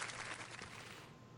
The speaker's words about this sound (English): I'll give myself applause. Thank you.